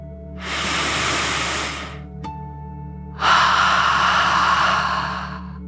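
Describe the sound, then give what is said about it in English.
A long, deep breath drawn in through the nose during a relaxation exercise, a brief pause, then a fuller, louder exhale. Breathy, with no talking. “As you imagine your whole body lightly floating in the water, let's take one more deep dragon breath, in and out.”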